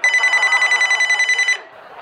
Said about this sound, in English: One evening in 1991, Pete and Suzanne Sandu's phone rang.